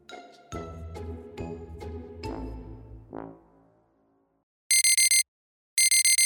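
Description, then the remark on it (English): A few soft musical notes ring out and fade into silence, then a loud, shrill electronic alarm bleeps in two rapid bursts of piercing beeps, insistent, sounding at 3 a.m. in the night. “The shrill bleeping insists that he attends to something urgent.”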